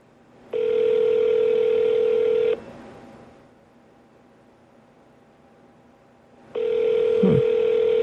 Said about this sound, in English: Come on, 31 Flavors. Maybe it's 31 rings before they answer the phone. Maybe they're super busy.